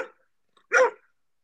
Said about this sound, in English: That's Hunter, the neighbor's dog. Oh, okay. Who is a mild barker, yet a very friendly-looking pit bull.